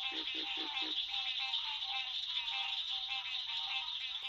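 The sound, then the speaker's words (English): A dense, continuous chorus of green tree frogs and cricket frogs in a southern swamp in the Apalachicola National Forest: buzzing nasal calls mixed with rapid clicking, with a few low pulsing croaks near the start, all at steady volume. “A variety of frogs are singing. They're the nasal tones of green tree frogs and the clicking tones of cricket frogs.”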